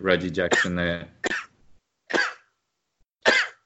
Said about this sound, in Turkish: Abi 6. Çok yaşa. Sen ne diyorsun? Ben hep böyle hapşırıyorum abi. Hapşırdım o 6'lı 7'li. Çok enteresan. İlk defa gördüm.